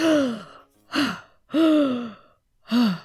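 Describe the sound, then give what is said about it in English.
A person gasps for air, loud: four heaving, voiced breaths in quick succession, alternating longer and shorter pulls, sounding like a voice performing breathless recovery after being released from a hug so tight he couldn't breathe. “When Sherman released him, Herman gasped for air.”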